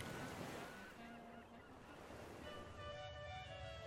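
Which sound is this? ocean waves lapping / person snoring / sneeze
ocean waves lapping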